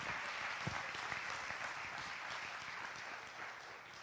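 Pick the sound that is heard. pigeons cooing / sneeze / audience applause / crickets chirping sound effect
audience applause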